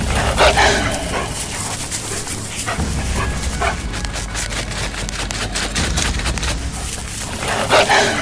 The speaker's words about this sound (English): Sounds like wolves. They smell blood.